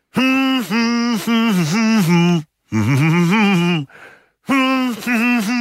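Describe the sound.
A single voice hums a melody in loud, sustained pitched phrases, with a short breathy pause partway through before the humming resumes.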